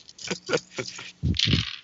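Four dice clatter: a few quick clicks as they tumble, followed by a louder rattling burst as they land and settle on a hard surface.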